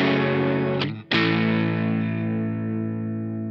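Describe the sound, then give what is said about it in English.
A heavily distorted electric guitar rings out a thick sustained chord, cuts off briefly, then is struck again and left to hang and slowly fade. Loud, with no talking. “And the thing just sounds great. Yeah, this is one of those guitars.”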